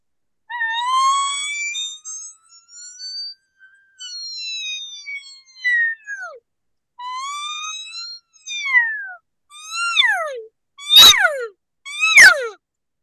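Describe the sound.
A mouth-reed elk call sounds a string of high, whistly squeals and whines, several sliding downward in pitch, ending with two sharp, piercing chirps. No one speaks.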